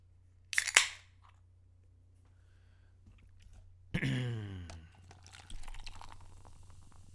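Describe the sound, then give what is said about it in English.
Light beer pours into a cup with a burst of gurgling glugs and fizzing splash, then a second steadier stream follows. A brief sharp crack-like hiss sounds earlier, before a short quiet pause. “pouring it into a cup.”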